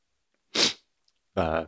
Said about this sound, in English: that's a different kind of allergy from the allergies I'm currently experiencing and will no doubtedly experience again during the course of this podcast as I erupt into another volcanic sneeze.